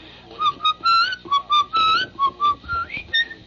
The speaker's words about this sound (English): I'm whistling something. What was I just whistling there? Which is another whistling song. What is that?